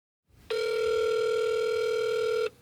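A phone line rings once on a call to the offices of Jack Puppies Incorporated: a steady, buzzing electronic tone holds for about two seconds, then cuts off, with no voices.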